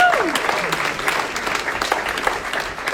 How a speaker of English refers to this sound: clap your hands and join me tonight to welcome Brad to the stage